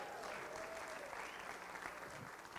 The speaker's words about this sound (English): We have the moms. Amen. Can I hear the mom clap in the house?